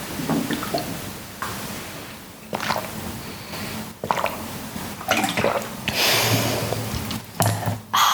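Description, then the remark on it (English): Sipping of water: a series of short, wet slurps and swallows with faint liquid sloshing in between, fairly loud, with no talking. “Let me take a sip of water here right now.”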